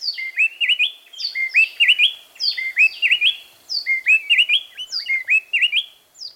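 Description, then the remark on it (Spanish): A mated pair of wrens sing a rapid, tightly interlocking antiphonal duet of bright whistled phrases, each bird singing one phrase, alternating so closely it sounds like one continuous song, clear with no other sounds. “Este dueto tan coordinado es conocido como canto antifonal.”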